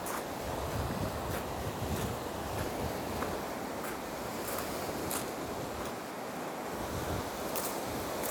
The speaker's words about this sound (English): Kites are being flown today. It's definitely a windy one.